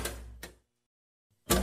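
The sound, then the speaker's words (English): A heavy metal prison cell door lock clanks loudly twice in quick succession as it is unlocked with a makeshift toothbrush key, then after a short silence another sharp, resonant clang rings out as the jail cell door swings open. “Okay, Cook is fumbling with the lock with the toothbrush key. Oh man, he got the cell door open.”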